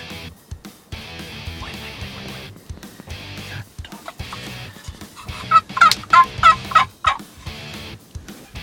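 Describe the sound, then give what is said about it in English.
A two-year-old wild turkey gobbler, coming into a decoy setup, lets out a rapid, rattling gobble, several loud bursts in quick succession, over a steady outdoor background with no one speaking. “watch a two-year-old gobbler as he comes into their decoy setup.”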